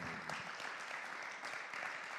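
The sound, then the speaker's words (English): A crowd applauds to give God praise this morning, many hands clapping at once in a dense, even wash of sound that holds at a constant level throughout, with a faint voice briefly audible at the start. “Let's clap and give God praise for them this morning.”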